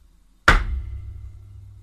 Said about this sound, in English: I would like to point out, I get moaned at for banging the table. Really, and hurt. I can imagine that sounded incredibly painful.